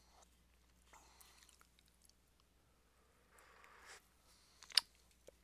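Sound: sipping coffee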